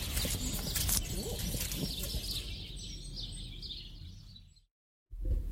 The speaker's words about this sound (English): have you got your wellies? I have got my wellies. Great, so let's squelch over then.